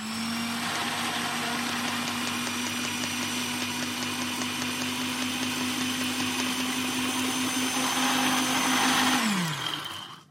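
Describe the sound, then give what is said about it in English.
A blender runs loud and steady, grinding cornflakes with a harsh, gritty whir for about nine seconds before the motor winds down and stops. “I think yeah, maybe we'll try putting them in the blender.”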